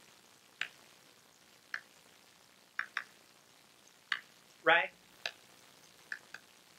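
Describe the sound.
Rainwater coming down a drain pipe outside a room as it starts to rain lightly, in a series of irregular drips and plinks, with one longer gurgling splash midway; a voice briefly speaks once.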